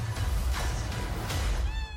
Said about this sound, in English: The kitties.